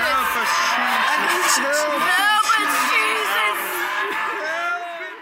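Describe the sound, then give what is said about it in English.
A crowd of Word of Faith church members yells loudly all at once in a blasting prayer, a dense, overlapping wall of fervent cries that holds steady for several seconds before easing slightly at the end. “When church members got violent, they would also perform blasting prayers. Blasting, which is how Word of Faith members pray, it's almost unbearable to play on radio.”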